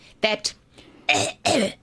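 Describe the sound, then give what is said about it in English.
A person imitates a wet, phlegmy cough: two quick hacks followed by two longer, rasping coughs, fairly loud with short pauses between them. “What about that wet cough?”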